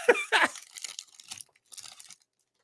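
The crinkly plastic wrapper of a trading card pack being torn open, two sharp ripping bursts followed by softer rustling and crackling that trails off into quiet.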